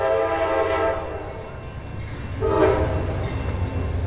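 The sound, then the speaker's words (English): A train arriving at a station in the French coastal town of La Ciotat rumbles steadily while its horn sounds twice, a brief tonal blast followed by another a couple of seconds later, over constant heavy rolling noise. “the motion picture simply features footage of a train arriving at a train station in the French coastal town of La Ciotat”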